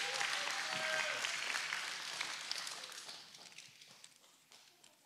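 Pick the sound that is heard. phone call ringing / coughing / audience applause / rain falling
audience applause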